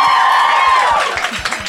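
A crowd applauds and cheers loudly and steadily, with scattered claps and a high whoop or whistle that slides down in pitch partway through.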